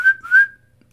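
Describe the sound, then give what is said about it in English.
A man whistles a short two-note call to his dog, each note sliding slightly upward, loud with no other sounds, then the whistle trails off into quiet. “"Malcolm," Franklin said. He whistled.”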